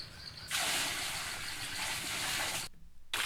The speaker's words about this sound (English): With that little fucking spittoon, he's just filling up the water.